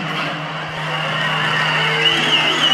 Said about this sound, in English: They're booing the guy.